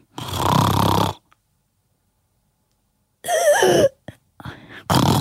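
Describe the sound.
A person imitates loud snoring that stops with pauses in breathing: a long rough snore, then about two seconds of silence, followed by a choking, gasping snort and more broken snoring.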